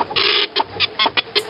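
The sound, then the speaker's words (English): A printer whirs and clatters while printing an outline: one long mechanical buzz, then a series of shorter rhythmic bursts as the print head moves back and forth, with no voices. “Printing the outline now.”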